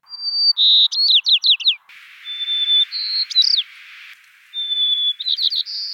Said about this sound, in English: You climbed to 13,000 feet on Mount Audubon in the Indian Peaks Wilderness to record the white-crowned sparrows.